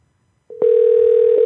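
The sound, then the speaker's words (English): An outgoing phone call's ringing tone: after a brief moment of quiet, a loud, steady single-pitched electronic tone sounds and holds without a break, with no voices present. “Pick up the phone, baby, baby, come on.”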